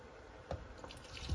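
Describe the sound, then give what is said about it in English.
A glass of water is poured into a pot, some of it spilling: a steady, soft liquid wash with a brief splash partway through, swelling louder toward the end. No one speaks. “So I'm going to add in one more glass. Whoops. Yeah, I got about a gulp's worth outside of the glass.”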